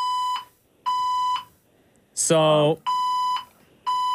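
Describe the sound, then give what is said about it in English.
A building fire alarm blares in steady, evenly spaced electronic beeps, loud, with a person briefly speaking between two of the tones. “The Panic And Chaos As The Fire Alarm Goes Off During The Show!”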